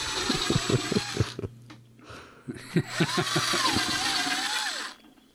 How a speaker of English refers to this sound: What's going on? Okay, well, he is drilling various size holes in the body of